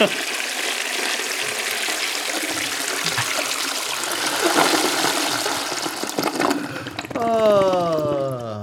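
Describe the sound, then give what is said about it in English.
A toilet flushes with a loud, steady rush of churning water for several seconds, ending in a high, warbling whine as the tank begins to refill. “Well, I don't remember, so there it goes. See ya. Flush it.”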